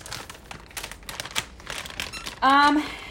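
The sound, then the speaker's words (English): A dog chews on a squeaky ball toy: a stretch of irregular crunching and clicking gnaws, then one loud, drawn-out, pitched squeak near the end. “Maybe it was just, like, squeaky balls. Obviously squeaky balls, because you can hear him.”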